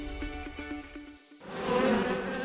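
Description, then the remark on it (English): A steady buzzing drone of many bees, their hum wavering slightly, then thickening into a louder, denser swarm sound partway through. No voices. “FBD doesn't stand for 50 bees droning.”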